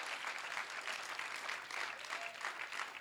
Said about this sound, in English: I wish somebody would clap this morning. Come on now.